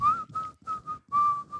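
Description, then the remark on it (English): Someone whistles a short melodic phrase of a song while loading in gear, clear, with bright sustained notes rising and falling in a few quick bursts and brief breaks between them. “And what he'd be doing is be whistling a song.”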